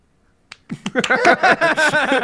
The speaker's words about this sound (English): Wave, please. Please clap.